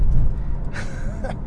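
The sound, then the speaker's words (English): A person yawns, a breathy inhale swelling into a short voiced, wavering groan before trailing off, with no talking. “Man, I hope that yawn's not contagious for you guys listening to it”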